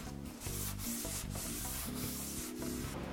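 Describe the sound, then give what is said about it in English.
Continuous rubbing of a tack cloth wiped across freshly sanded wood in repeated back-and-forth strokes, with steady low tonal sound running underneath and no voices. “Now we're gonna hit it with a vacuum and the tack cloth.”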